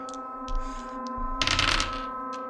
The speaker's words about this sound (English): I rolled funny number on the dice. I rolled a 6 and a 9.